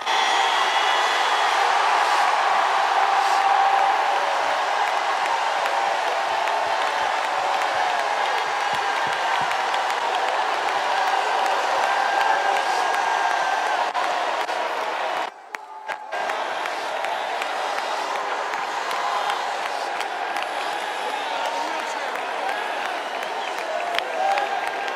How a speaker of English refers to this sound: I want you to let out the biggest shout you've given all night long. Would you do?